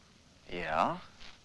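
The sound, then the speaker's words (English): A coyote howl: one short, moderately loud wail that swoops up in pitch and then slides back down, with nothing else around it but faint background hiss. “A coyote. There aren't any coyotes in England.”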